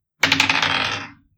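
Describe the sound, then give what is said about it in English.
A short clatter of dice being rolled, landing on 19: a sharp start, a quick burst of rapid clicks and rattles, then a fading tumble that settles within about a second. No voices. “Roll me one quick, just sort of luck.”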